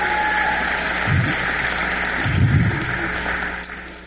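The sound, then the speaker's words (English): A church audience claps for the worship band in a dense, continuous wash of applause that holds an even loudness throughout, with a couple of brief low murmurs rising beneath it. “You clap your hands for the worship band, amen.”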